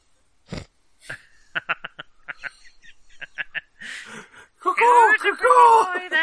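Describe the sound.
A person does a vocal imitation of a bird call: a string of quick clicking chirps, then a loud, wavering warble, with no other talking.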